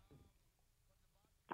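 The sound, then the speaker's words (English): A single short phone keypad beep, from the caller accidentally pressing the numbers on the phone during the call, sounds near the end, brief and fairly loud over a quiet, muffled line with a faint murmur of voice earlier. “Are you aware that throughout this entire phone call, you keep accidentally pushing the numbers on your phone?”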